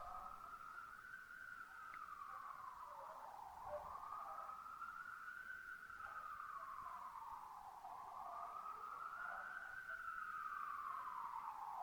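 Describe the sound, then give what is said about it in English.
A distant emergency siren wails in slow, rising and falling sweeps, steady and moderately faint against a low background hum, with no voices present. “In a constantly changing tapestry of experience, into which the siren sounds come.”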